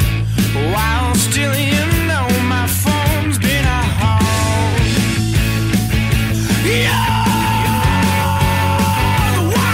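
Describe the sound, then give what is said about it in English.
Loud, dense rock music with a vocalist whose line rises into a long, strained scream held over the pounding bass and drums in the second half. “Yeah, which again is a crazy scream.”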